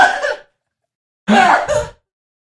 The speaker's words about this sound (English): There's this woman in the back that won't stop coughing. She's just coughing.